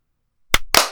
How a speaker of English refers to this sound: Yeah, do you want to clap first? Yeah, let's clap first.